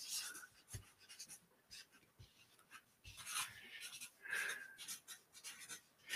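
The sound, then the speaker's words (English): Quiet squeaky scratching of a Sharpie marker dragging across paper in short irregular strokes, with brief taps and faint rustles between them and no talking. “This is probably like ASMR for the Sharpie paper.”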